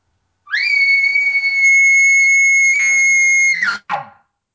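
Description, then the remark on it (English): An imitated aggressive, emotional elk bugle: a loud, high, whistling tone held steadily for about three seconds, with a strained, intense edge, then breaking off into a short, rough grunt at the end. “it's more of an aggressive, emotional bugle”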